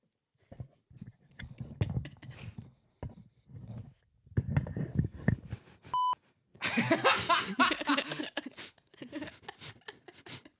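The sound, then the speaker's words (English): A single short, steady censor bleep cuts in briefly between stretches of people talking, beeping out a person's name, followed by busy, scratchy noise and more voices. “We've been beeping out their names.”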